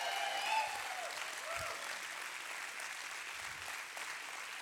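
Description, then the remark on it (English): An audience stands and claps for Jesus in a dense, continuous wash of hand claps, with a few faint cheers or voices rising briefly near the start, then sustained applause throughout. “If you believe that today, let's give Jesus a hand clap as you stand to your feet.”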